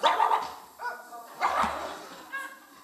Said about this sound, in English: Sometimes dogs will come up and bark, but they just go so far. Because they got invisible fence.